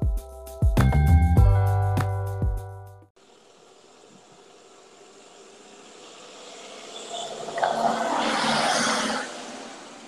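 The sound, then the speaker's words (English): A short burst of bright tonal chimes, then steady outdoor hiss with insect-like chirping as a car approaches and swells loudly past on Vickerman Street, its whoosh peaking near the end. “It's a car. They have cars here, you know.”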